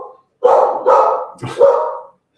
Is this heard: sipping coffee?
no